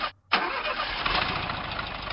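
An old, air-cooled Volkswagen Beetle engine starts up: a brief crank, a short pause, then it catches and settles into a loud, steady, rough idle. No voices are heard.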